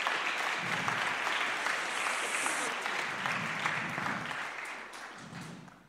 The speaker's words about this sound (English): Amazing. Can we just give them all another round of applause?